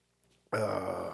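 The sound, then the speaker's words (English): A single loud burp erupts abruptly after a brief quiet moment, a long, rough, guttural belch that holds steady to the end. “I got a burp in this somewhere. There it is.”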